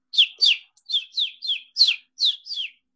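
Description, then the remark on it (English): Someone whistles an imitation of a bird call: eight quick, high, downward-sliding chirps in a steady, evenly spaced rhythm, clear with nothing else in the background. “Do you want to hear my actual bird call?”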